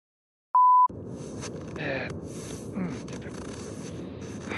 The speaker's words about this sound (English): Please leave your name and number, and I'll get back to you as soon as possible. Leave it at the beep.